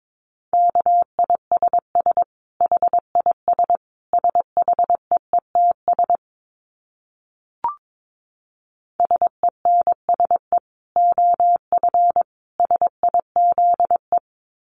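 A steady mid-pitched beep keyed on and off in quick dots and dashes, Morse code sent at 22 words per minute, with a brief pause and a single click midway before the keying resumes.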